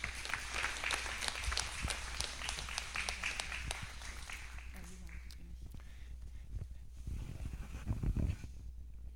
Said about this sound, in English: So thank you very much. If everyone give a round of applause, please.